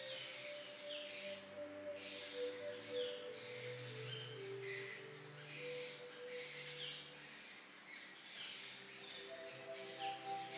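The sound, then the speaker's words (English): A dense chorus of birds chirps and calls continuously throughout, busy and overlapping, over a steady low humming drone of sustained tones. No one speaks. “As we join with the harmonics of the wonderful birds, their song, a gift from the divine”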